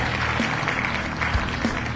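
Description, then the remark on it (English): A canned applause sound effect from an applause button, hit by accident on the Hard Rock Lunchbox show: a steady, dense wash of clapping and crowd noise that holds at an even loudness for about two seconds, with no voices speaking. “And I did not mean to hit the applause button.”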